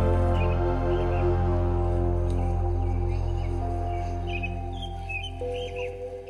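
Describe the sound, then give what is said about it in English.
Birds chirp and tweet in short scattered bursts in a park in the morning, a sound effect in a song, sitting lightly over a loud, steady bed of sustained musical tones that continue throughout. “I love the birds when he wakes up in the morning. In the park.”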